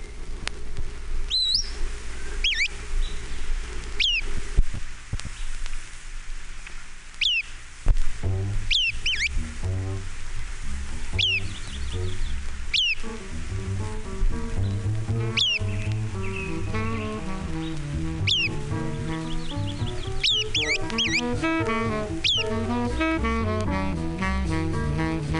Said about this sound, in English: MacGillivray's Warbler. Eight examples.